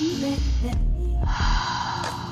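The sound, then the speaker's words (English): A single long, deep inhalation drawn through the nose, a steady airy rush lasting a couple of seconds, fairly loud with a low hum beneath it and no talking. “You can just do magic just by breathing through your nostrils, and you ascend and shift your vibration.”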